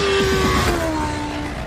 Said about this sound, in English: Judging by the sound of the engine, you'll have guessed that this is the one where the incredible new MRR was unveiled.